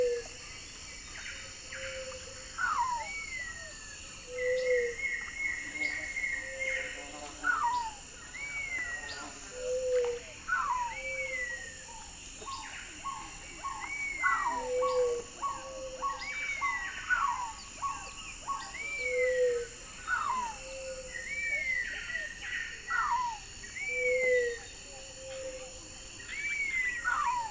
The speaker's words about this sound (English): Oh, and sweet plaintive whistles from what is probably the same cinnamon Attila I recorded at dawn.